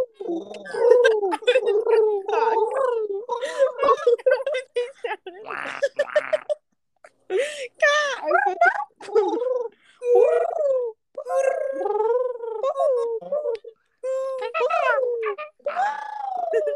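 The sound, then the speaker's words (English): Several people imitate pigeons with warbling, throaty coos that waver in pitch, overlapping in loud bursts with a few brief pauses and some gargly, purring tones mixed in. “We should all make pigeon noises right now.”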